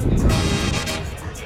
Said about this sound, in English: Let's go. Give us air horns, folks. Let's go. Give us air horns. There it is.